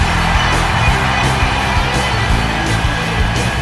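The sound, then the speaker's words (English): A large wrestling arena crowd at a fatal four-way tables match roars and cheers continuously, a loud, dense wash of many voices with scattered shouts and whoops rising out of it, and no single voice standing apart. “And the crowd is loving it.”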